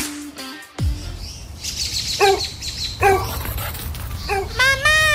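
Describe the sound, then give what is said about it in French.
A dog that has got out of the yard again barks several times in short, spaced yips over a steady outdoor background hum, ending with a longer, higher whining bark. “Maman! Le chien est encore sorti de la cour!”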